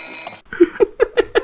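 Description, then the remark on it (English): An alarm clock rings in the morning to wake someone, with a bright, musical tone, sounding a rapid, even series of five chiming pulses, fairly loud, with no voices. “And when she wakes up in the morning with the alarm clock, she's like...”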